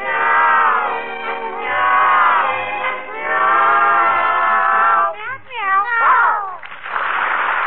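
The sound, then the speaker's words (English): Voices imitate a cat, drawing out a series of long, sing-song meows, loud, their pitch sliding and wavering, before breaking into quicker yowling glides and a burst of rough noise. “Meow, meow, meow, meow, meow, that's all you ever say.”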